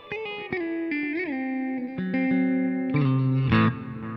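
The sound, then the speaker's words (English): Sustained electric guitar notes with heavy distortion, bent and slid between pitches, played through a Guru Echosex 3 delay that adds repeating echoes behind each note. Loud, no talking. “Then you can add some Guru's Echosex 3 … delay.”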